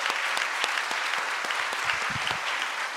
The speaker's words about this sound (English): And within about 5 years, we paid off every single dollar of that debt by God's grace. And yeah, you can clap for that.